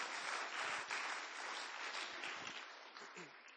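A church audience applauds steadily as one of the church's leaders is called up to speak, a dense wash of many hands clapping at an even level that holds for several seconds before easing slightly at the end.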